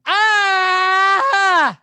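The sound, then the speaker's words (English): A man lets out one loud, sustained primal scream, a roar lasting under two seconds, his voice cracking briefly near the end before trailing off, unaccompanied. “It was a primal scream and a concerning noise to my neighbors upstairs.”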